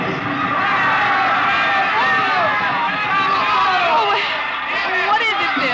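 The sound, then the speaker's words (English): A large crowd yelling and cheering for a papier-mâché bull at a spring night fiesta in a plaza in Mexico, with fireworks going up, a dense, loud wall of overlapping voices that stays steady for the whole stretch, with individual shouts rising out of the roar. “William Travis stood on the edge of the yelling crowd, smiling.”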